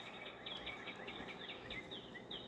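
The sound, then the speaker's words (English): A dense chorus of many birds chirping and twittering outdoors, with quick high calls overlapping continuously over a soft background hiss, fairly faint, with no voices. “I'm here, along with every bird in the Eastern Seaboard, I guess. There are a lot of birds on your end.”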